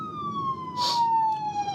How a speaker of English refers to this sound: Man, there's something else. Another fire engine's going past me right now.